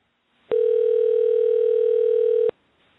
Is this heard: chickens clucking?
no